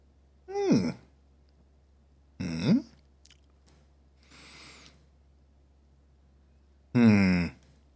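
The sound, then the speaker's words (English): Several short mouth sounds during a beer tasting: pitched, satisfied exhales around a soft slurping first sip and swallow of beer, ending with a louder breathy sigh. “Yeah, we're done nosing. let's drink it.”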